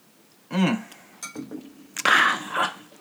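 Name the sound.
glasses clinking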